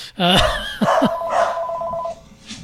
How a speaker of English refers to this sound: Oh my gosh, everybody's going crazy. And of course, as soon as the phone rings, both the dogs go insane.